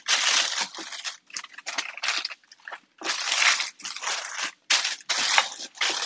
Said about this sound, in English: This crock pot is going to be hot. So I'm going to lift it out and dump it into our parchment paper.